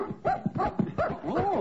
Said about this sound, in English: Oh, it's a cocker spaniel.